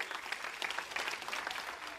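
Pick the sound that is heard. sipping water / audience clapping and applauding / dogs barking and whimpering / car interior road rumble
audience clapping and applauding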